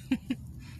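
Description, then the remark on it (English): Two quick, soft sips of hot hazelnut coffee from a cup in the morning, quiet, a brief pause between them, then near-silence with faint room tone. “So if you hear a couple silent moments, seconds or whatever, that's me sipping on my hazelnut coffee.”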